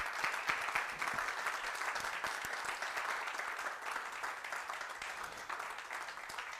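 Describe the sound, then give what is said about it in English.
An audience claps in praise of God steadily for several seconds, dense overlapping handclaps forming a sustained wash of applause that holds at an even, moderately loud level throughout. “If this has helped somebody, give God a hand clap of praise today.”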